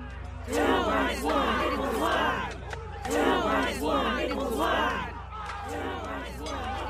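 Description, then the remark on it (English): A crowd chants "Two minus one equals one" in unison around a fighting circle by smelters, loud rhythmic phrases of many voices rising and falling in repeated waves over a steady low rumble, with no pause between them. “The chant is disorienting in its stark, unfeeling assessment of your circumstance.”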